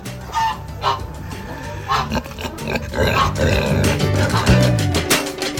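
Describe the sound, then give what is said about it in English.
A giant old pig on a rescue farm, about to be given CBD, grunts and snorts in a noisy farmyard, with hens clucking and a rooster's call mixed into the steady background. “What we're going to do now is give a giant pig, a giant old pig, CBD.”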